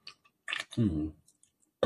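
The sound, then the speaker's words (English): Someone takes a quick sip of a Red Bull energy drink, with small mouth clicks, a short slurp, a voiced sigh afterward and one more sharp noise at the end. “Excuse me, I'm going to sip a Red Bull.”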